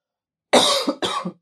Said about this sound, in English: Sorry, I'm choking. I don't know why. Water. I have no idea why I started choking.